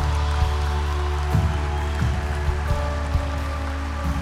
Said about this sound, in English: We welcome you. Come on, keep clapping. They're still coming.